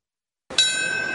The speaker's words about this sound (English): Today, the chime of a bell echoed in Lower Manhattan at 8:46, beginning the somber remembrances of 9/11.